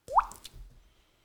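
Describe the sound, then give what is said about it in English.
A single water drip imitated with the mouth: a quick, rising, hollow plop, fairly clear, followed by a short soft tail and then silence. No one speaks. “I wish I could have made that sound effect when I was in school.”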